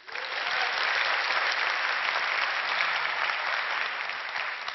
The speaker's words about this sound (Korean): 고맙습니다. 이렇게 뜨거운 박수로 불러내 주셔서 이야기 시작하기 전에 다시 한번 감사 인사드립니다.